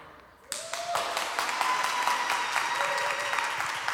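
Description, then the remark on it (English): A crowd breaks into loud, sustained applause after a brief quiet moment as the speaker takes a drink, many hands clapping at once with scattered cheers and whoops rising above the dense clatter. “But every time I take a drink, y'all need to clap and make some noise.”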